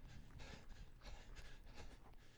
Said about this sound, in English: Whoa, like, what is that sound bite? It's just breathing, running. You sure? Yeah. You sure it's running? That's what I thought too.